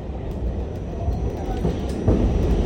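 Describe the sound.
A subway train running, heard as a steady, loud low rumble and rattle that swells slightly near the end, with muffled voices faintly underneath.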